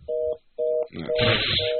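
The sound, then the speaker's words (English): Telephone redial tones after a dropped call to a cell phone: a steady two-pitch beep pulses on and off three times, interrupted midway by a burst of loud, crackly line noise. “He just hangs up on us. What the hell? Well, it sounded like he was in the car. All right, let's try that again.”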